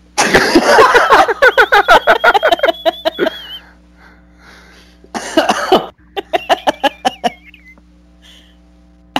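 A harsh coughing fit, a rapid string of hacking coughs with a thin wheezy whistle, then a pause before a second shorter bout. Loud, with no talking.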